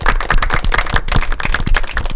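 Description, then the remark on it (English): A golf clap sound effect: a steady patter of polite applause from a small group, many overlapping claps of even loudness for about two seconds, with no voices. “Jumped right in on the golf clap.”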